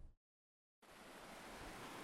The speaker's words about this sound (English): All right, I'm down here by like a raging river up in the mountains above Boulder.